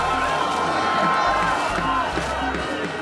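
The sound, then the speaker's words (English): A dense, continuous roar of many voices from a large crowd of street protesters demonstrating against changes pushed through by Prime Minister Benjamin Netanyahu's coalition government, loud and steady, with shouting and rhythmic low thumps running through it. “Yesterday, those protests intensified.”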